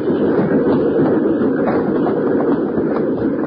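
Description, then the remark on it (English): A moving train rumbles and clatters on the rails in a steady, loud, continuous wash of noise, with no voices over it. “He's making for the train, Bill!”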